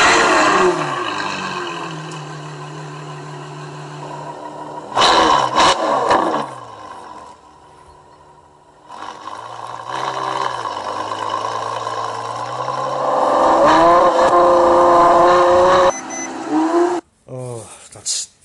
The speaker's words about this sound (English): That's really lovely. What was that, sir? That was a Ferrari F12. Yes, it was. It was indeed.